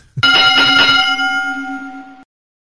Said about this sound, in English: Ring the bell.